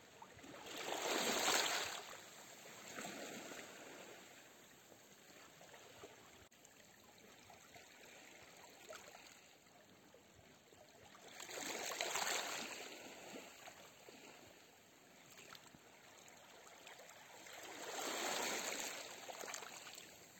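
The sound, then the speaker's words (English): A steady, gentle stream flows and trickles, its broad watery hiss swelling into three louder surges at roughly even intervals before settling back. No voices are present. “And watch that energy getting taken away by the water.”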